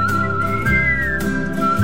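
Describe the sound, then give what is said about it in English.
A person whistles a sustained, slightly wavering melodic tone over a steady low musical backing, with no talking. “Come on in, we'll whistle for you.”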